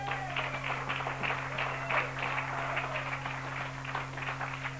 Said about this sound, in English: Isn't God awesome? Yeah. Give God a hand clap. Yeah.